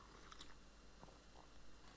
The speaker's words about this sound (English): Quick sip of coffee for me there.